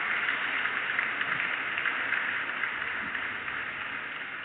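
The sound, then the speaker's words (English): A crowd claps steadily for several seconds, a dense, even wash of many hands with no single claps standing out and no voices over it. “Yeah, that's the crowd clapping.”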